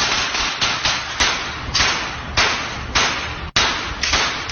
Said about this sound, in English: So considerable amount of gunfire being aimed towards a target.